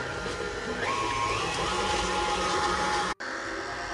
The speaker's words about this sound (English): And now I have two packages of softened cream cheese. This is about 16 ounces total, and I put them in the bowl of my KitchenAid, and I'm going to start my KitchenAid and beat my cheese for about 2 minutes on medium.